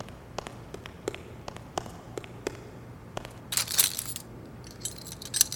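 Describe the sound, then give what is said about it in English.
The handle of the locked door to a furnace room is tried: a run of sharp metallic clicks, then louder bursts of jiggling, rattling metal as the latch holds fast. “I take it that this is the door to the furnace room.”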